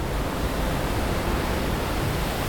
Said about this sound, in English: The storm raged around their boat, tossing waves as high as mountains towards them.